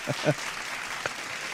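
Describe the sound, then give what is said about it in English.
Brief, steady patter of applause at moderate volume, with a couple of louder bursts near the start and another about a second in. No speech over it. “This is a sarcastic applause.”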